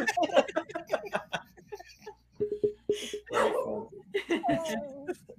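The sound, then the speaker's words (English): A dog barks at someone walking past the house in a quick series of short, sharp yaps amid ongoing conversation and light laughter, moderately loud. “Sorry, my dog's barking.”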